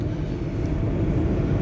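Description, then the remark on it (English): A steady, heavy low rumble of a train going by, holding a constant loudness throughout with a faint hiss on top and no voices. “Mostly because, oh, the train's coming.”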